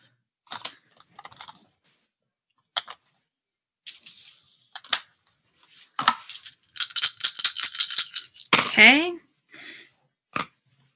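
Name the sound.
dice being rolled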